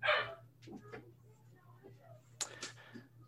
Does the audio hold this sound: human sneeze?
no